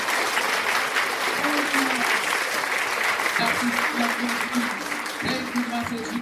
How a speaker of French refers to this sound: Là où tu es, ma soeur, mon frère, applaudis pour le Saint-Esprit. Applaudis pour le Saint-Esprit.